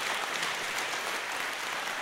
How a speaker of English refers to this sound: How incredible is that? You can put your hands together for that. I interrupted your applause.